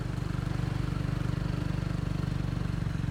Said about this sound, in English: I begin riding the tuk-tuk back into town.